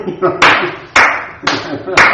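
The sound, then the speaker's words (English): Four sharp hand claps land at a steady pace, about half a second apart, each a crisp bright smack that fades quickly, with a faint voice murmuring underneath. “How many times do we wait and, you know, clap for the screen?”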